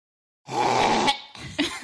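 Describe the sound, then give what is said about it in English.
A voice imitates the harsh, gurgling throat-clearing hawk a man makes while rinsing his toothbrush after brushing his teeth, to get toothpaste phlegm out of the back of his throat: one long raspy, phlegmy rattle, a short pause, then a second rougher burst, fairly loud. “When he brushes his teeth afterwards, when he's rinsing his toothbrush, he always does this like.”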